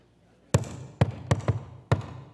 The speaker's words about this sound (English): And you want to go, that's a friendly knock.